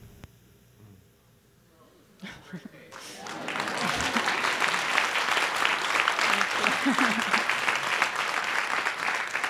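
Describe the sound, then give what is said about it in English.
An audience bursts into loud, sustained applause after a few quiet seconds, a dense patter of clapping that swells and holds steady to the end, with faint murmurs at the start. “It's nice when one's high school turmoil can be clapped at later.”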